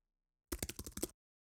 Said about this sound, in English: Well, I guess I accidentally stopped recording and then re-recorded with my... with my stupid keyboard sound effects.